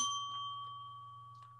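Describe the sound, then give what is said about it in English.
A single bright bell ding rings out as the signal to reveal answers, slowly fading over a second or so, with a steady low hum running underneath. “When you hear the bell, we reveal our answers.”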